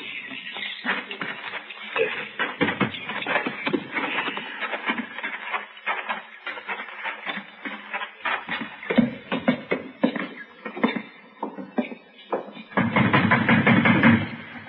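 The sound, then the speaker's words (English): Knocking on a door: a long run of sharp, hollow raps in irregular bursts, with a louder, denser stretch of banging near the end and no voices. “Banging on the door.”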